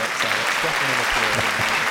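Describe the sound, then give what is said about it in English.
Loud, steady applause from a crowd, a dense wash of clapping with no pauses, with some indistinct voices mixed in underneath. “Deafening applause, please.”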